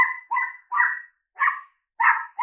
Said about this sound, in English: And try to read it even in spite of a little crazy little dog is going crazy. That's Ethel joining the podcast, y'all.